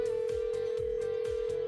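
A steady electronic telephone tone hums without a break, like a line ringing or waiting to connect, as K95.5 radio hosts Cash and Bradley place a call, with a soft rhythmic thumping beneath it. No one speaks.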